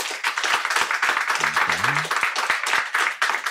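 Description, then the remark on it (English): A debate audience breaks into steady, dense applause, clapping to vote that millennials will not be left behind, many hands clapping at once in a loud continuous wash, with a brief murmur of voices partway through. “And clap if you think, no, millennials will not be left behind.”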